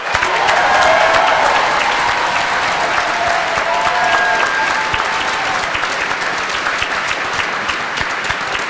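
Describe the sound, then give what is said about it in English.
Sustained audience applause, a dense wash of clapping at steady loudness for the whole stretch, with a few faint cheers and whistles rising briefly above it early on. “How about a round of applause for this incredible cast?”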